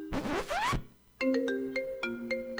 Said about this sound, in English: I'm getting a phone call right now about this party. I'm getting a phone call right now.